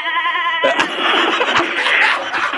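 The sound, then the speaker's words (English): A goat being thrown with a catapult lets out a loud, wavering bleat that cuts off abruptly into a burst of harsh, noisy clatter and rushing sound lasting a couple of seconds. “There goes the goat.”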